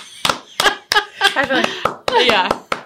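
About nine sharp hand claps land in a steady rhythm, fairly loud, while someone keeps vocalizing between the claps.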